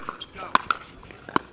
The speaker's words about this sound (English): You can hear it from the parking lot. Emanating from a Chula Vista park on a warm Thursday evening is the sound of hundreds of plastic pickleballs slamming into hard asphalt.